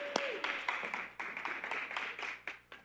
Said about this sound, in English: Round of applause for the team for doing their group project here.